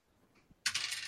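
A sudden bright, rattling clatter of dice tumbling across a hard surface, fairly loud, continuing for about half a second after a brief quiet tick; the dice are rolled for a sneak attack in a game.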